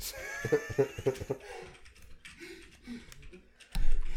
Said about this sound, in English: She's typing over there. What are you typing?